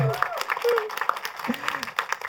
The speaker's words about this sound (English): I think on that note, a big round of applause, please, for Max Walker Silverman.